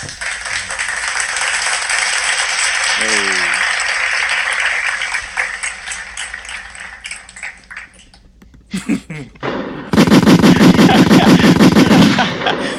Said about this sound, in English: I didn't know if I was supposed to do the gunshots, because like I feel like after everybody claps, then somebody just starts shooting shit up.